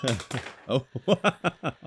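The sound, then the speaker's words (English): A voice imitates a thrown pen bouncing off everything and landing back where it was picked up: about eight short, clipped vocal bursts in a quick, fairly regular rhythm, mixing buzzy tones with hissy clicks. “I threw a pen and it bounced off everything.”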